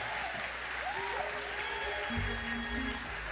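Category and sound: crowd, audience clapping hands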